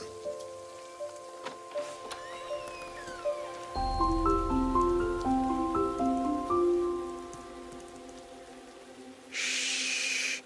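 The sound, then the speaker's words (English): Rain patters steadily under a slow melody of soft, hooting tones, with a low rumble joining midway; near the end, a brief burst of louder, hissing downpour. “So I had to walk all the way back in the rain.”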